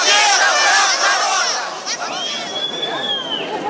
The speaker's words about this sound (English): That sense of betrayal was evident on the streets of Donetsk. At a pro-Russian rally in Lenin Square, Akhmetov was denounced by an angry crowd.